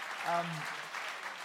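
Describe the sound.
A crowd applauds with a steady, dense wash of clapping throughout, and a short voiced call rises briefly over it near the start.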